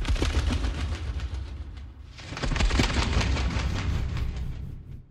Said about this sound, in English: No, it was a sheet of toilet paper. Wow. Okay, yeah. Here are the moth wings in the trailer for Clarice.